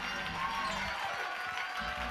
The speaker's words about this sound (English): Oh, clap your hands one more time and shout to God with a voice of triumph.